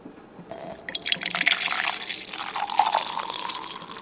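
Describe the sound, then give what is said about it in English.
Coffee is poured into a cup in one continuous stream lasting several seconds, a steady gurgling splash with a faint ringing tone underneath. No one speaks. “So, before going there, let's have a coffee.”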